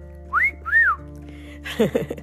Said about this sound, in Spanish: Yo he presenciado cuando un grupo de mujeres atrevidas les dicen piropos a un hombre solo. Claro, si lo ven solo. Si los ven juntos, no se atreverían. Pero he visto grupos de 3 o 4 mujeres que hasta les han chiflado el famosísimo fiu fiu.